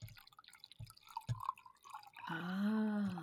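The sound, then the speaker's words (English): A few scattered drips and splashes, then a steady stream of raspberry Twisted Tea pours from a can into a glass, the gurgling tone rising in pitch as it fills. No one talks. “I am drinking a raspberry twisted tea. Do you want to hear the pouring also?”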